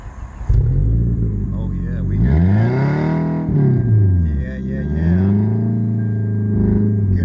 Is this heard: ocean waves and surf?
no